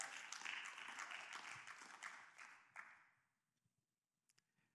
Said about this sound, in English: I know some of you clapped. But I think there's some of you that you clapped on the outside